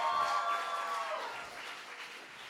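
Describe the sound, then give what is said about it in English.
A crowd at a youth camp cheers and yells in a loud, sustained roar, with a few high shouts standing out at the start before the noise eases slightly toward the end. “All right, can anybody have a big cheer?”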